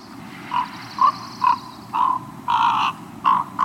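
A pair of ravens' soft, warbling courtship notes, made while sitting side by side preening each other's feathers: about eight short, gurgling calls in an uneven sequence, some clipped and some drawn out, clear with no talking.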